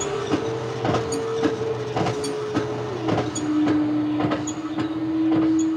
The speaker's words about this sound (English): You hear me pumping the air out of the room. Yes, that's clever, isn't it? You breathe, and soon there'll be nothing there to breathe.